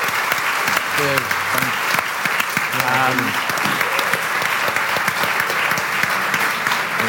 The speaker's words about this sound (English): So, massive round of applause for Greg O'Shea.